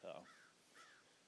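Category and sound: bird, crows cawing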